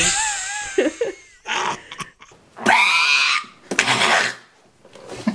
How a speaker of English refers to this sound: I'm just like coughing weirdly all the time.